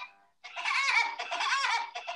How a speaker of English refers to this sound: Sorry. That's fitting. Yeah, exactly. That's very fitting. The Woody Woodpecker laughing.